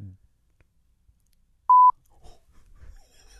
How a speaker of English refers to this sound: Now you guys couldn't hear that. Yeah. Cause it's just a big beep. So we'll let your imaginations run just wild with what those could have been.